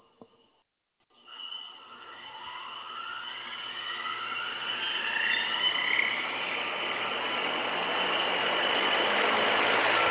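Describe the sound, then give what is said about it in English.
After a second of silence, helicopter rotor blades start whirring inside a 25-foot-diameter vacuum tank at JPL, evacuated down to a CO2 atmosphere at 1/100th of Earth's atmospheric pressure. A whine rises in pitch as they spin up, then settles into a steady, loud, hissy whir with no talking. “Hear the whir of the blades.”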